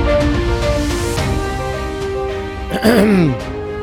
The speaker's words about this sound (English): Nothing like starting off with a big old cough.